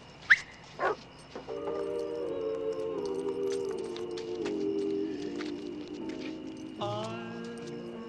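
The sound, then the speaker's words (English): A dog gives two short, sharp barks, then settles into a long, continuous whining whimper that wavers in pitch for several seconds, steady in loudness. “I'll put five on the mutt.”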